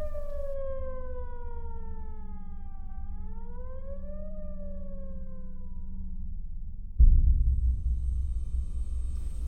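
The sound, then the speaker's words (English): A facility's alarm sirens wail at night, a loud wailing siren with a harmonic tone that dips, rises, then slowly falls in pitch over a steady low rumble, before a sudden heavy roar takes over near the end. “It was joined by another, and then another, until the whole facility was one blaring alarm.”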